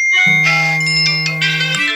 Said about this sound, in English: let out the geo messaging, which sent out an SMS signal to everyone in the area.